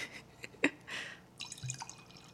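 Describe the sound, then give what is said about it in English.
A 2019 Scarlet Cuvée rosé of Pinot Noir wine pours into a glass, with a sharp clink at the start, a bubbling gush of liquid, then softer trickles and drips as the pour tapers off. No one speaks. “Why don't you give them a little pour?”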